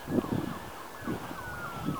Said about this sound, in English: I'm hearing sirens now too. All this noise. Usually when I hear sirens, I say a prayer for whoever that's affecting.